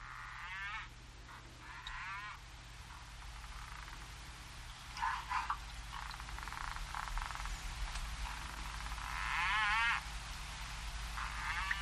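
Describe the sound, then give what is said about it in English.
Slowed-down harbor porpoise echolocation clicks, used to find prey, recorded underwater: scattered bursts of rapid, buzzing click trains that warble in pitch, set over a steady low rumble and hiss of background noise from other fish and shrimp moving around. “So those high-pitched signals are how they find their prey.”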